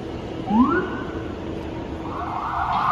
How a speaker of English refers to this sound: سيارة شرطة. A police car.